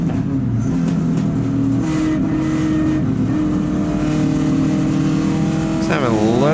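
A BMW 2002 race car engine drones steadily at high revs while lapping the track toward turn five, holding a loud, sustained pitch before a sharp rev change near the end, recorded from inside or on the car.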